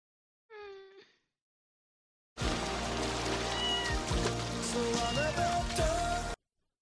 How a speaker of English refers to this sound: He's getting rained on! He's trapped in this box because he's a little baby.